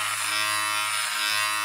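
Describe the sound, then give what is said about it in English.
An electric razor buzzes steadily and loudly while shaving a beard, a dense mechanical drone with a low hum underneath, running without a break through the short clip with no voices. “It's really loud. I could just hear buzzing.”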